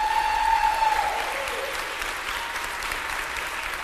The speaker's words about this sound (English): All the applause go to her, okay?